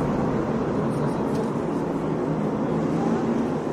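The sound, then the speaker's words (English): A loud, steady roar of racing truck engines during a truck race, a dense continuous rumble with no clear rise or fall, as the field runs with truck number 18 out in front. “Truck. Number 18's out in front.”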